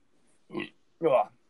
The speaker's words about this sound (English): that was a tough burp.